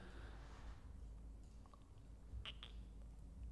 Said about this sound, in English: Take a sip of beer quick.